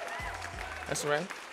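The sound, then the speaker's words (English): A brief burst of audience applause and cheering played as a sound effect cued by the host: a steady wash of clapping with a few deep thumps and a voice rising over it. “You know they cheering for you.”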